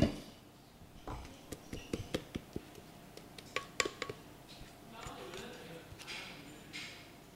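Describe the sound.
Indistinct voices of a family chatting over lunch in the background while dishes and cutlery clink and clatter in a series of sharp, irregular knocks, some louder than others.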